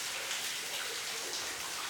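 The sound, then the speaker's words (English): Water drips and patters all around inside a pitch-black, curving tunnel in a dense, steady wash of droplets, soft and continuous with no pauses. No one speaks. “It was pitch black, and the sound of the dripping water came from all around.”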